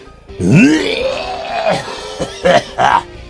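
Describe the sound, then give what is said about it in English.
A man with a cold clears his throat with a long, gravelly, rasping sound that rises and falls, followed by two short, gruff bursts. No words are spoken. “All right, let's take a look at, let me get that frog out of my throat.”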